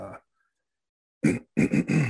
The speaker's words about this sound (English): I just got to clear my throat a little bit. I'm really bummed out.